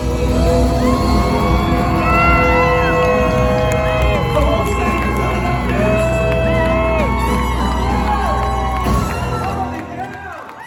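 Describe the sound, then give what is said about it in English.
A packed concert crowd roars loudly and continuously at the end of a song as the performer goes off stage, with many whoops, whistles and shouts layered over dense cheering that eases off slightly in the final second. “As he was ending the song, as he was going off stage at the end, he yells out, and I'll play the clip, and it was almost hard to hear because it was so noisy”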